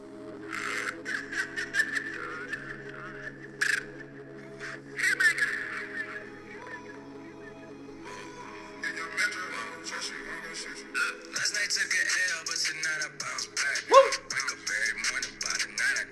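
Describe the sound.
A person imitates an owl with a string of drawn-out woo hoots, fairly loud, repeating over several seconds with bursts of rougher, caw-like noise mixed in.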